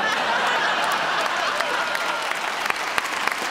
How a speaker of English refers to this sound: Knock it off with the claps.